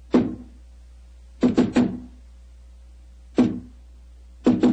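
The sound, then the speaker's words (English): Knuckles rap on a solid door to a basement club in sharp, hollow thuds: a single knock, then a quick set of three, another single, and finally a pair. A low steady hum sits underneath, with no voices. “Who knocks?”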